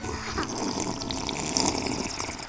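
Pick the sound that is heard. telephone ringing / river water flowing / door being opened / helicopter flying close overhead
river water flowing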